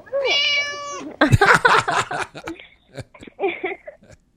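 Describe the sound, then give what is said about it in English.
A cat lets out one long, clear meow in a studio, followed by bursts of laughter and chatter from several people. “Meow. She's kind of like, ooh, there's girls there.”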